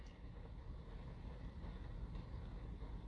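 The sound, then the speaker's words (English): Steady rain patters on the roof of a car parked in the parking lot of an urgent care in California, a dense continuous drumming with a low rumble underneath, heard from inside the vehicle. No one speaks. “I'm in the parking lot of an urgent care in California while it's raining in my car.”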